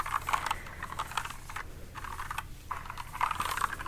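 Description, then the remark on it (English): Rapid, continuous typing on a computer keyboard, with dense clicking keystrokes in bursts separated by brief pauses, over a faint low hum and no voices. “But I'm busy typing lots of other things.”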